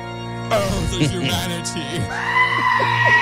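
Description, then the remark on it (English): A loud scream sound effect erupts suddenly: choppy, sputtering vocal noises give way to a long, strained, bleat-like wail that holds steady at high volume until the end. “Can we get sued for that scream?”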